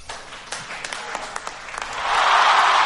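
A round of applause: scattered sharp claps at first, then swelling into dense, steady clapping that grows louder toward the end, with no voices.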